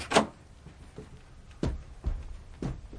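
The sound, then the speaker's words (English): A door is opened, with a sharp click at the start and then a few soft thuds and clunks spaced about half a second apart. No one speaks. “I'm waking up and switching on the light, looking at the clock, getting out of bed and crossing the room to the door.”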